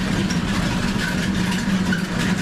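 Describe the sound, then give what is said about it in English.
Steady, heavy mechanical rumble of a mill wheel fed by three small rivers, driving flour-mill machinery that grinds grain into flour in an old three-level half-timbered house: a constant low droning hum with a dense whirring texture and no pauses, continuous throughout. “Fed by three small rivers, the mighty mill wheel does its work and ensures that flour is made from grain.”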